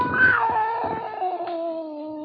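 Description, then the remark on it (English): A cat, back arched and every hair on end, yowls while walking stiff-legged in a half circle around a bushmaster snake: a loud, long, wavering, drawn-out cry that slides slowly downward in pitch, with brief breathy hissing bursts near the start, with no talking. “Back was arched and every hair stood on end. It moved, stiff-legged now, walking in a half circle around the snake.”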